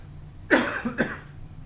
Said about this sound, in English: I would say, hold on a moment, I'm going to cough.